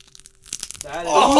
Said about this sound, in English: Come close to the mic. Oh, heck. Yeah, get close to the mic. Eat the Cheeto. Should I? Yeah, crunch it.